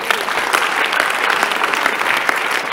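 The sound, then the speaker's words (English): An audience bursts into steady, dense applause for Jesus during a sermon, many hands clapping at once in a loud, even wash of sound that holds throughout without any talking over it. “That's a good one to clap for Jesus.”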